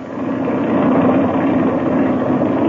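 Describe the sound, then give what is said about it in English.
A small airplane engine idles steadily as it warms up with the throttle cracked open a little, a loud, continuous, even drone with a rough buzzing texture and no voices. “while the engine's warming up, I want to give you some instructions.”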